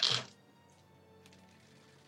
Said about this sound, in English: Whoa, so, that sounded like a lot of dice.